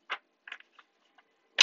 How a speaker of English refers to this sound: So, I am shuffling my tried and true tarot mucha. I cannot guarantee that you will hear me shuffling the whole duration of this reading, but based off of faith, we will go from here.